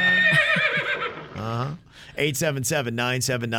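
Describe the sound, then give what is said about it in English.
A loud, high-pitched whinny from a little horse quavers for about a second, then drops away as a man starts talking, his voice filling the rest of the moment. “I'll call in and go, nay, if it's no. Yeah, little horse.”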